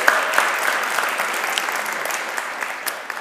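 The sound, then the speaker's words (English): An audience at a baptism breaks into steady applause welcoming friends and family, a dense patter of many hands clapping at a fairly even loudness throughout, with no voices rising above it. “Yeah, please applaud.”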